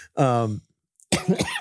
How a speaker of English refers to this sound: gosh, this is making me cough too.